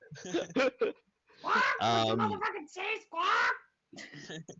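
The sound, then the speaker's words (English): A person imitates a raven's harsh squawking, a string of raspy, caw-like vocal bursts of varying length, fairly loud, with short pauses between them. “Yeah, the crow just starts like, or the raven just starts like squawking.”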